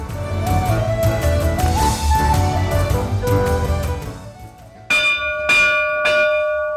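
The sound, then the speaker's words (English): A dramming bell at the Glenkinchie whisky distillery in Scotland, rung to start a distillery tour, rings out with three quick, loud strikes near the end, each leaving a bright, lingering tone, after several seconds of busy, rumbling background noise. “We always start the tour here with a ring of the dramming bell.”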